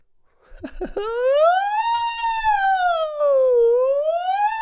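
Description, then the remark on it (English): A voice imitates an ambulance siren: a single loud, sustained wail that rises, dips and climbs again for several seconds, following a couple of short vocal sounds at the start. “There's an ambulance coming.”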